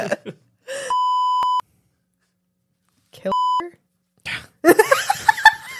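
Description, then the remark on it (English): A steady, loud censor beep covers a spoken word, followed by a shorter second bleep cutting into speech; lively laughter and chatter break out right after. “Darci, I couldn't hear you over the beep.”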